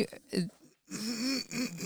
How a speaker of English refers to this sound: Oh, sorry. I shouldn't clear my throat right into the mic.